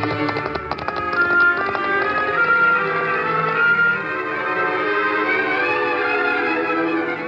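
Rapid hoofbeats of horses galloping off, clattering at first and then fading away beneath swelling orchestral music: the horse Scout sets out over his own back trail, with the Lone Ranger following on Silver.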